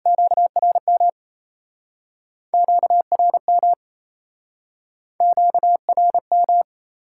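Fast Morse code tones at 28 words per minute sending QSO elements, a steady mid-pitched beep keyed in three quick bursts of dots and dashes separated by short pauses, clear with no voices.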